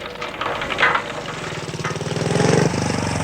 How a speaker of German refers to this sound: Der Motorradfahrer eben. Das war einer von diesen Ledertypen.